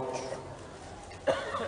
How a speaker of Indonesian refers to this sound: Nah, saya ini batuk. Ini karunia Allah. Kok batuk nikmat? Cuma sedikit batuknya.